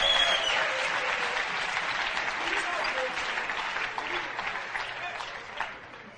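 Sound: audience clapping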